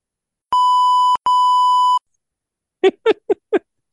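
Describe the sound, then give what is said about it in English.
Two loud, steady censor beeps from a beep button at a single pitch, each lasting under a second with a tiny gap between them, followed by four short, choppy bursts of sound. “I was wondering if I would get to use the beep button because it was the end of the season.”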